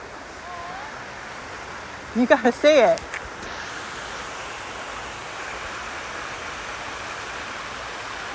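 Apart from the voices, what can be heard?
creek water flowing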